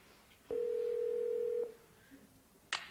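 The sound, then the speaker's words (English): A phone line rings once, calling the Dawson residence in Kenan & Kel: a steady electronic tone holds for about a second, then a faint click and a short crackle of line noise follow. No one speaks. “Shh, it's ringing.”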